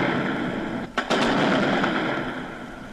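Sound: gunfire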